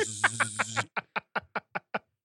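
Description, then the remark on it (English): A voice mimics the stuttering buzz of a man's dental work as he walks by speakers: a rough, pulsing drone for under a second, then six evenly spaced short buzzy blips, clear. “Don't worry if it buzzes.”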